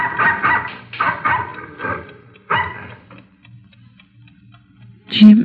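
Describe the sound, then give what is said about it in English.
A dog at a ranch in Carson County, Texas, lets out a run of loud barks at night, waking the occupants, then falls silent while a clock ticks steadily, before one more sharp bark near the end. “At 11:30 on the night of May 22, 1947, the Stockholm Ranch, located in the middle of Carson County, Texas, was darkened for the night when the occupants were awakened by the barking of a dog.”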